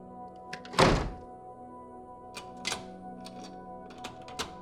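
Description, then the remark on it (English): A door shuts with one solid thud, followed by a run of small mechanical clicks and rattles as a lock is turned. No one speaks. “Close the door behind us and lock it.”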